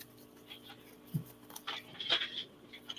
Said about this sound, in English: I'm going to pull a card for you, Kim. I can get these shuffled.